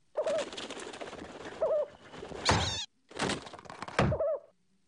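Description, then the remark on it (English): Warbling pigeon-like coos from a pigeon-rat hybrid creature, mixed with shrill squeaks and rough, scratchy bursts, loud, coming in two busy bouts split by a brief silence. “I made a pigeon rat.”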